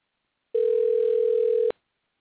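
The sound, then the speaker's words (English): A single steady ringback tone on an outgoing phone call, a clear electronic hum lasting just over a second before cutting off abruptly, heard alone with no voices. “Pick up the phone. I'm coming to you, 662.”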